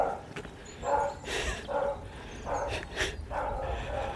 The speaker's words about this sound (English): Morning dog. Brown, sort of Labrador cross type thing. Very cross.